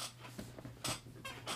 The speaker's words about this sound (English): And if you can hear that, that is my squeaky chair. I sit in this chair for approximately 8 to 10 hours a day doing schoolwork, going to class, going to work, doing the podcast, all of this other stuff I'm doing.